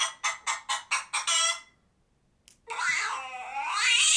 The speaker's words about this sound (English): That's a pissed off kitty.